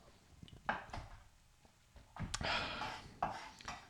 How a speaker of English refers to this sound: There we go. He's chopping finely.